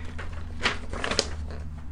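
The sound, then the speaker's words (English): A few short, crisp rustles of paper pages being shuffled, with soft crinkling bursts scattered over a quiet background hum and no one talking. “I got a lot of emails from people this week ragging on me about still using paper.”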